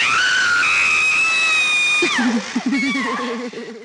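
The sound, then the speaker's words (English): A woman screams loudly in a film scene, a long piercing high-pitched shriek that suddenly drops into a lower, wavering, sobbing wail, continuous for nearly four seconds. “Scream! Go on, scream!”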